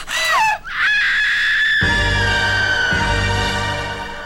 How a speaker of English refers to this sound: I just love scream. Fantastic scream.